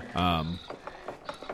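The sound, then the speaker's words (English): A short mechanical whine gives way to a series of evenly spaced ratcheting clicks as the gear mechanism of a clock tower turns, moderately loud. “The clock tower, of course.”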